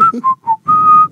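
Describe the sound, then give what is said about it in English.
A person whistles a short rock song melody, several quick notes followed by a long sustained tone, clear with no talking over it. “Do we have to pay royalties if I whistle that?”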